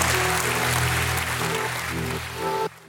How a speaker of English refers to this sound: Give God a hand clap and a shout of praise.